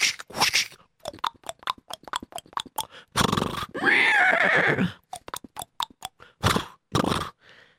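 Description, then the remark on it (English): A horse pulling a wagon whinnies loudly in a long, wavering neigh, surrounded by quick rhythmic clip-clop hoofbeats and crunching steps, with no one speaking. “Giddy up, horsey!”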